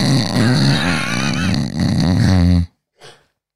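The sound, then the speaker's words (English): A person loudly imitates their own snoring, a long rasping, rumbling voiced sound lasting over two seconds, then stops abruptly, followed by a brief soft breathy exhale after a short pause. “Do you snore? Oh, yeah. Like.”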